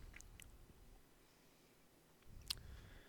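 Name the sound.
typing on a keyboard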